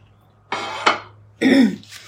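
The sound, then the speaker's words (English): A person coughs and clears their throat in two rough, raspy bursts, the second lower and gravelly, separated by a short pause, with no talking. “And I have a frog in my throat, so I'll probably have to take sips of my coffee to be able to read.”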